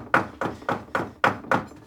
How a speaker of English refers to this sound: When you cut the herbs now, it's important that you make an audible thud on the cutting board.